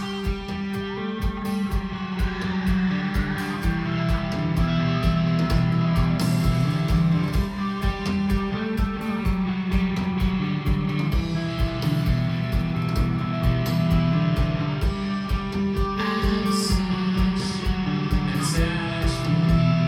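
A live rock band plays a song at full volume, with steady pounding drums, sustained guitar chords and a dense, continuous wall of sound throughout.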